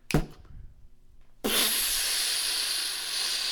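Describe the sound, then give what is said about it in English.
Someone imitates water gushing from a fire sprinkler that burst after being hit by a car: a brief sharp burst, a second of near silence, then a loud, steady breathy hiss sustained for about two seconds until the end. “Okay, and there's water gushing all over.”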